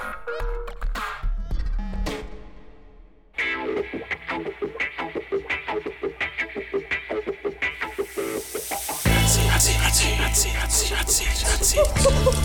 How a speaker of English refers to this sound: So there's that sizzling sound.